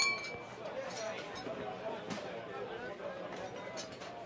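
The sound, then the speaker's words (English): Glasses clink a few times as drinks are raised in a toast, amid a steady murmur of crowd chatter, the bright chimes short over the busy background of voices. “Having a second drink, Simon held his glass, making a toast.”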